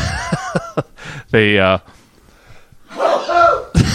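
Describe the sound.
A loud, voiced sneeze bursts out close by, with short coughs and throat noises around it, while people talk in the background.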